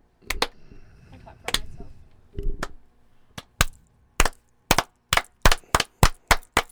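Sharp single hand claps, widely spaced at first with some low murmuring voices, then picking up into a steadier, quicker rhythm of loud, crisp claps, about fifteen in all.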